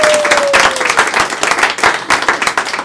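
A crowd applauds steadily, many hands clapping in a dense, loud burst that holds for about three seconds, with a faint high tone sliding downward briefly at the start.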